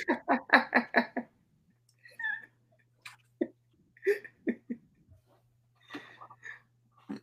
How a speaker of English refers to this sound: Here, hold on 1 second. I have the hiccups right now.